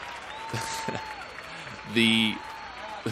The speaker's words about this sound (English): So, thank you so much for the applause.